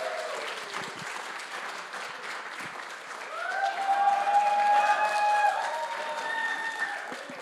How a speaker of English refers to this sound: And we have our great team members here ready to share with you. So if you can give them a round of applause, they're a little bit nervous.